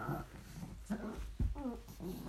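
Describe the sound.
A dog, Panda, whimpers in short, high whines, with a brief low thump in the middle as she paws at a door to knock on it, and muffled voices underneath.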